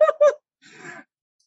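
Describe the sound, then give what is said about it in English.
A voice imitates heavy breathing: two quick, loud, voiced gasping huffs, then a short pause and a softer, raspy exhale of breath. “I would say breathing too heavily. Like when somebody goes like this.”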